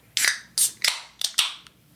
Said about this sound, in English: All right, everybody, let's crack open these beers.